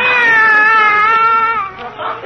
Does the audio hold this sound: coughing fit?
no